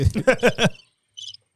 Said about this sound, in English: Them crickets funny as hell.